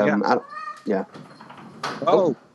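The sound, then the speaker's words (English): A door creaks open with a few short bumps and rattles as a cat is let in from outside, and the cat's brief meow can be heard, while muffled voices murmur in the background. “Sorry, it's just letting my pussy in.”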